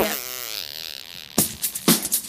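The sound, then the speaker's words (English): A voice makes mouth fart noises: a long, wavering buzzy raspberry, followed by two short, sputtering bursts. “How else do you, how are you supposed to end a podcast? Fart noises.”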